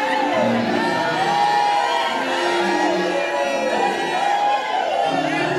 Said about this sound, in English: Why would all these people be shouting if they hadn't taken advantage of what we're talking about several times?